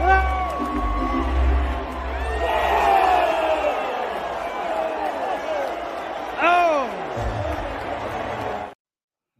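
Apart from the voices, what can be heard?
crowd cheering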